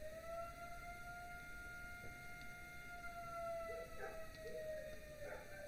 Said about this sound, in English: Just a minute. Do you hear that? What is it? You know, so it's 12 o'clock, so the 12 o'clock siren is going off.